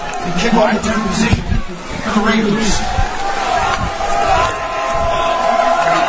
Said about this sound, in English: The crowd's starting to come alive here at Crozier Keystone Field as George boots one all the way back.